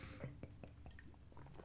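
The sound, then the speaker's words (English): Someone gulps down a big mouthful of 8-Track Amber beer, a run of soft wet swallowing clicks at a quick, uneven pace with faint breathy mouth noise underneath. “You do a big chug. You do a big gulp there.”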